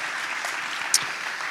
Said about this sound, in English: So why don't we just give another round of applause to the amazing musicians.